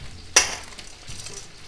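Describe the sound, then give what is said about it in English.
Tomato in extra oil sizzles in a hot pan with one sharp, loud pop early on, followed by a steady crackling hiss over a low background hum, with no one speaking. “Okay, now the tomato will stay like this. It starts to pop out everything.”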